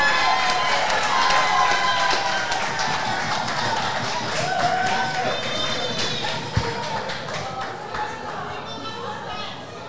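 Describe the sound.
An audience applauds steadily for about ten seconds, a dense wash of clapping with cheers and murmuring voices mixed in, fairly loud throughout and tapering slightly toward the end.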